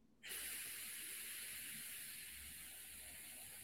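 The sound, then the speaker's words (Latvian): A steady hissing mouth-to-lung draw on an e-cigarette vape, starting abruptly and holding an even, airy sizzle for several seconds with no talking. “O, tas ir kārtīgs vilciens.”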